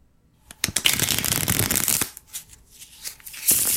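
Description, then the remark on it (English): A deck of playing cards is riffle shuffled, a rapid fluttering burst of cards interleaving, followed by a few taps and a second quick flurry as the deck is squared. “If you're a magician, you know what this is, or you like playing cards. Yeah, it's shuffling. Riffle shuffle.”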